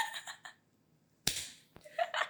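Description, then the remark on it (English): A sharp hand slap cracks out, followed moments later by a second quicker smack, with brief bits of voices before and after. “You didn't pick up my hand, you just slapped it.”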